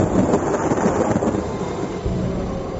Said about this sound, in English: As the atheist got up to leave, there was violent thunder and lightning.